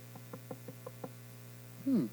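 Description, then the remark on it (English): A quick run of six evenly spaced knocks imitating someone knocking at a door, over a steady electrical hum, followed by a short voiced sound from a person. “Here's another knock, real quick.”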